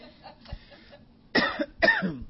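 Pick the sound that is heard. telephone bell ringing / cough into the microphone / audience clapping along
cough into the microphone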